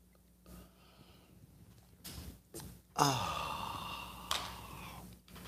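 A few short slurping sips of a beverage, followed by a longer breathy exhale of satisfaction that trails off near the end.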